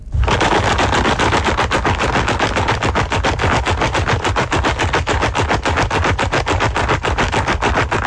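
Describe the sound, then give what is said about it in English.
A container of pens shaken hard and steadily for several seconds, making a loud, fast, continuous rattle of clattering plastic with no pauses and no voices. “The container with the pens and stuff in it.”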